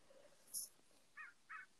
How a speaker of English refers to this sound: This crow will not shut the fuck up. I feel like that crow.